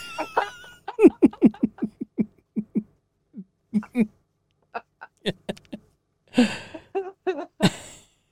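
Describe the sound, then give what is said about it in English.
A run of rapid, voiced bursts like wheezy laughter gives way to a few harsher, breathy coughs, fairly loud, with short gaps between them and no talking. “He's triggering my cough again.”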